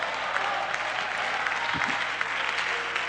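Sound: audience applause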